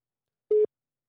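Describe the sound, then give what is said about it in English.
A single short telephone ringing tone as a phone call is placed, a steady mid-pitched electronic beep lasting a fraction of a second, clear with silence around it and no voices. “All right, it's just ringing right now, folks.”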